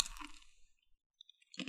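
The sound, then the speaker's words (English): A loud crunch of a locust snack being bitten and chewed, fading out, then a few faint clicks before another crisp crunch at the end. No one speaks. “Under the crunch, there's the sudden burst of meat, and it's actually more pleasant than you would have imagined.”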